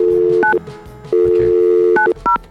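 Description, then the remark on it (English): A steady dial tone hums, broken by a few short electronic keypad beeps as a phone number is dialed to make a call, clear with no voices. “So we're going to try and call”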